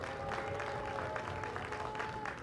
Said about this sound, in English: Staccato clapping in the stands.